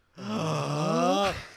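A single loud gasp from one person, quickly becoming a voiced, drawn-out cry that holds for about a second before cutting off, heard alone with no talking.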